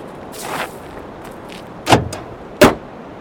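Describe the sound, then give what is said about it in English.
A car that won't start: a soft rustle, then two sharp, dull clunks about a second apart, with no engine cranking or catching afterward, only quiet between them. “We've tried to start it a few times when they're away, but never had any luck. It's always just like this.”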